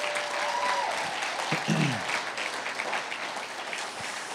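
A church audience welcomes first-time guests with sustained, dense applause, many hands clapping steadily for several seconds with a faint whistle or cheer rising briefly over the crowd noise.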